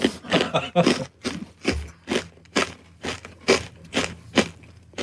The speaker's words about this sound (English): So this is a mushroom snack. Crunchy shiitake, mushroom chips. Solid. It's like a little... Oh, my God.